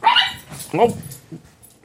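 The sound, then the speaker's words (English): Dogs fighting beneath the listeners at a bungalow bark and snarl in a few sharp, loud bursts, two strong yelps followed by a weaker one, sounding like a brief scuffle between them. “The dogs are fighting beneath us.”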